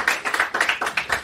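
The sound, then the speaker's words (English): A short burst of audience applause welcoming a guest on the Matt Brown Show: many hands clapping at once in a dense, crackling wash of sharp overlapping claps, fairly loud and steady, with no voices. “Round of applause, guys.”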